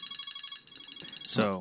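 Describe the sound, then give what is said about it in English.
A timer alarm set for 8 minutes and 46 seconds going off, a rapid string of high, shrill electronic beeps pulsing steadily for about a second before a man's voice cuts in over the end. “So that timer that you set”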